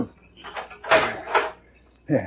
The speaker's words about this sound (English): I have the key right here. I'll have the padlock off in a minute.